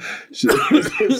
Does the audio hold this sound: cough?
yes